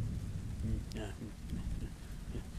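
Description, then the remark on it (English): Steady, dense hiss of heavy rain fills the whole stretch, with a few brief, faint vocal calls or murmurs from a group of returning hikers complaining about the rain poking through the downpour. “They're basically just bitching and complaining that the rain has gotten heavier and ruining their fun.”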